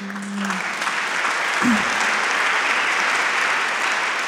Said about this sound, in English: You have to stop clapping, okay? Because it's making me really nervous.